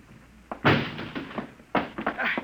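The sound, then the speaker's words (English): A door being broken down: two heavy crashing blows about a second apart, each followed by a brief rattle and clatter, loud. “Break down the door.”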